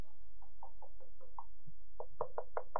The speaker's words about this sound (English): So he said, okay, Father Abraham, if that's the case, please allow Lazarus to return to earth and go and knock on my brother's door.